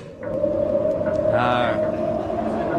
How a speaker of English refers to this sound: Then it must simply be the white wind. Shut the door, for tonight the wind is loud and bitter.